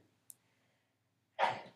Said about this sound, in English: Bless you. Bless you. She sneezed so loud.